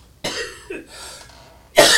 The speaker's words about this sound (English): I'm going to cough because the Oreo cookie is there.